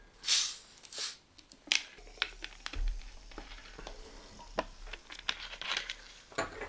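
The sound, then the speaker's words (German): Soft drinks, Flirt from Aldi and Freeway from Lidl, are poured into glasses: a few rushing hiss bursts give way to a steady, crackling fizz of many small pops and clicks, with no talking. “Wollen wir die Getränke endlich einschenken?”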